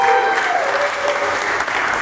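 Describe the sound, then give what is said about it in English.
A crowd claps steadily and loudly for about two seconds, voting for Team Mego as the winner of a debate: a dense wash of applause with cheers and a few whistles rising through it, and no one speaking. “All right, those of you who think the Mego, in favor of Mego, won the debate, make some noise.”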